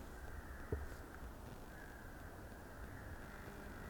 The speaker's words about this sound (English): you can hear kind of a muffled flock of crows. Very loud, vocalizing, but far away.